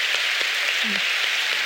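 A round of applause: dense, steady clapping from a crowd that holds at an even level for the whole moment, with a brief low murmur partway through.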